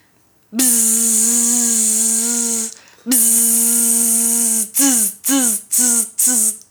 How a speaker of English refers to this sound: The sound of a vibrator. My God, that was a dead giveaway.